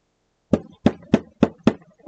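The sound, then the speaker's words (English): Five firm, evenly spaced knocks on a basement door, each a sharp thud with a short hollow ring, loud, with no voices. “listen, that knocking. How funny it sounds.”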